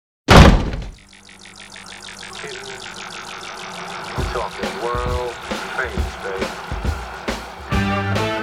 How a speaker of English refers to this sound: Now, as I said, close the door on your way out.